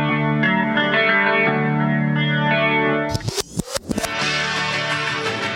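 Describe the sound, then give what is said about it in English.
A rock music track with a steady, effects-heavy droning sound that suddenly breaks into a few stuttering, chopped-up repeats before the full, dense texture loops back in. No one speaks. “But I'm going to be a bit self-indulgent and play a track myself here, Alan, because it's one that I'd like to sort of chat a little bit about”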